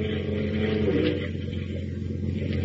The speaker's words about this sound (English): As we continue now, we join Lois and Horatio Horn aboard the Nancy Ruth, Captain Marble's diesel-powered fishing boat. A swirling gray fog is closing in over the choppy waters as the boat heads eastward toward the open sea.